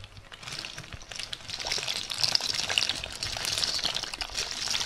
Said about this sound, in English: And now we'll add the pasta in. And for the pasta, you add a portion around 100 grams for each person. I am using rigatoni here today, but really you can use any kind of pasta at all. So we'll just drop it in.